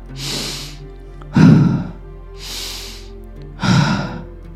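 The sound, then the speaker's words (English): Slow, steady breaths repeat in an even rhythm: two soft airy inhales, each followed by a louder, fuller exhale that sounds like a gentle sigh, with no talking. “Keep going, keep breathing.”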